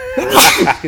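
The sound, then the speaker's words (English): A single loud sneeze bursts out with a sharp breathy explosion and a brief voiced tail, with nothing else around it. “Excuse me, sorry. Bless you.”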